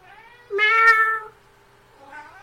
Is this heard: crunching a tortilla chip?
no